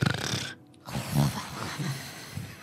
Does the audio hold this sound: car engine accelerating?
no